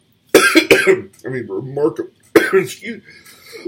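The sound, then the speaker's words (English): A person coughs: a quick pair of harsh bursts, then a rough, voiced throat clearing, and after a short pause another sharp cough followed by more clearing. “Like I said last week, I've given up editing out the coughs.”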